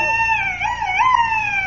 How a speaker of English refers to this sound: it was a duck call I carved out of a turkey bone